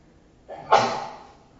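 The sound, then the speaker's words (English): A single sneeze: a short breathy intake followed by a sharp, explosive burst that fades over about half a second, with no talking around it. “Bless you.”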